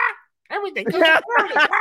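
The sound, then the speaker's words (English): A human voice mimics a squawking parrot: one short raspy call, a brief pause, then two loud, nasal, grating squawks in quick succession. “Love the parrot, dude.”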